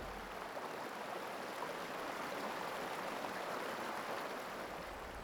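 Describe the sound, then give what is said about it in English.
The River Ephra flows steadily down the middle of Hexham Road in West Norwood, a continuous rushing, gurgling wash of water at an even, fairly loud level with no breaks and no voices. “And what I didn't realise was, in the middle of this road, Hexham Road in West Norwood, where I lived for a couple of years with my mother before she passed away, the River Ephra flows right down the middle of that that street.”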